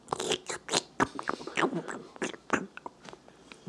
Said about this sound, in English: I can hear you fucking chewing.